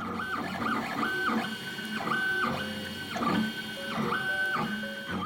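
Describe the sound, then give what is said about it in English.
A 3D printer runs steadily, its motors giving a low hum beneath whirring tones that repeatedly glide up and down in pitch as the head moves, with no voices. “A few flashing lights and a low hum, and suddenly you have a scale model of the Eiffel Tower made out of plastic.”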